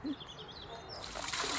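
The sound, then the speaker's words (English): Water splashes and pours into a battered old iron pail encrusted with white lime, a bright rushing splatter building in the second half, with faint bird chirps in the background before it starts; a little water is being put in for mixing lime. “So we'll put a little bit of water into the bucket.”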